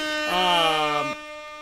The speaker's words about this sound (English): let's get a special little air horn right there for Tampa Bay Damage